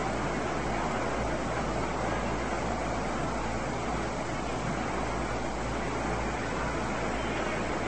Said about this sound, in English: Don't believe this rain's going to last too much longer.